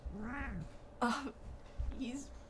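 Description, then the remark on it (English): A male cat, just let out, meows three times in quick succession. The first call is drawn out and rising-falling, followed by two shorter, sharper meows. “We just let him out, and he just meowed and shoved his wealth back in. Can y'all hear him meow?”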